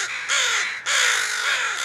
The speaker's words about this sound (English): So in a nutshell, what a crow funeral looks like is the first bird that discovers the body will alarm call. So that's that really harsh cawing sound. And that sound attracts other crows to the area.